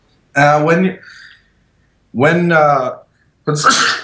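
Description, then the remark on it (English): A few loud sneezes in quick succession, each a voiced burst with a breathy edge, separated by short silences, with no one talking. “Bless you.”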